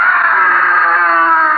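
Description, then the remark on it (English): A single loud, sustained scream of pain and terror rings out near midnight at a seaside cottage, holding steady and unbroken for over a second with no talking around it. “It's almost midnight, when suddenly there's a scream of pain and terror.”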